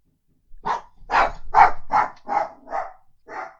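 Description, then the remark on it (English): A dog barks about seven times in a quick, steady run, the barks loud with short gaps between them and no talking over them. “Dog? Yeah, he doesn't like it either.”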